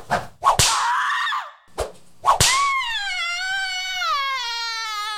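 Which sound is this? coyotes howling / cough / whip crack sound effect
whip crack sound effect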